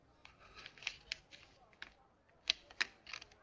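A man handles paper during a wedding speech: soft, irregular rustles and crinkles in scattered bursts, with a couple of sharper crackling snaps late on, all fairly quiet.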